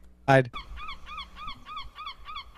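Seagulls call in a quick, steady series of repeated squawking cries, following one loud, harsh burst at the start, fairly close and prominent with no talking.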